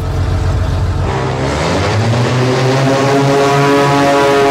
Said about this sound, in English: Dario Costa is a racing pilot from Italy, becomes the first person to fly a plane out of a tunnel and then through another tunnel and lives to tell.